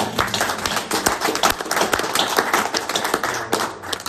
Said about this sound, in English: Let's give the Lord a clap.